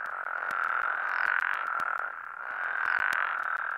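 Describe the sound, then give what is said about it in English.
A dense chorus of many frogs croaking at once, a steady shrill trill with sharp clicks scattered through it, swelling louder twice over a few seconds. No voices. “The good news is that with a little bit of habitat restoration and fewer flights, The frog populations, once diminishing during the 1980s and early 90s, have pretty much returned to normal.”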